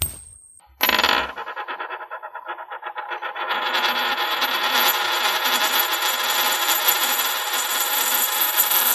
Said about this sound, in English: Maybe we should just flip a coin. Yeah, I'd be okay with that. Heads, it's a horse and a lure. Tails, it's just a lure.